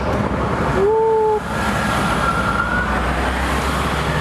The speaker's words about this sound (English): Oh, here comes a train.